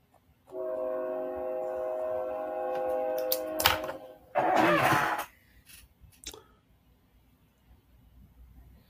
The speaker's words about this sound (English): Hold on, train.